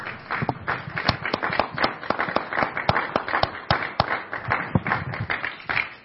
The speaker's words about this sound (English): Can we give a hand clap to all of our ladies?